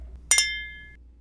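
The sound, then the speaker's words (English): Two quick wine glass clinks in close succession as a toast with Merlot, followed by a bright ringing tone that slowly fades, with no talking. “So cheers to another sip.”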